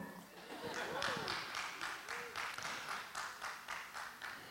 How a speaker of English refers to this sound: I didn't know that it deserved an applause